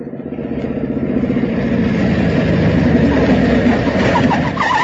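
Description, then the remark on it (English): A police officer's motorcycle engine roars steadily along a road for several seconds, a loud, continuous throaty drone with a slight surge toward the end, with no voices. “I was just starting to search his pockets when I heard a motorcycle roaring along the road.”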